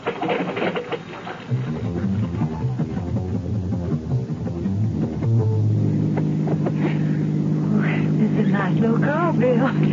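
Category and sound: vehicle, car engine driving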